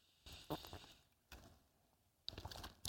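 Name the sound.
pages turning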